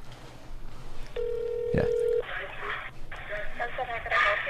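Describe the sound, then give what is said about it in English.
A single drawn-out electronic ring tone sounds through a small phone speaker on speakerphone, with a sharp click partway through, then a muffled voice comes on the line as the call connects to place a pickup order. “All right, I'm going to hand you the phone, and if you don't mind, let's put it on speaker, and you can hold it into the...”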